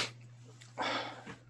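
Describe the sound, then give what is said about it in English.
A single sharp sneeze from allergies bursts out near the middle, breathy, preceded by a faint intake and followed by a quick sniff, with a low steady hum underneath. “Oh, your nose is going to? Allergies, yeah.”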